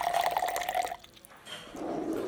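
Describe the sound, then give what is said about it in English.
Poland Spring bottled water pours from a bottle into a glass, a steady gurgling stream with a ringing tone at first, a brief pause, then a softer, splashier pour. No one speaks. “So we're going to get the cap, the sound of the cap, and the pouring of the liquid.”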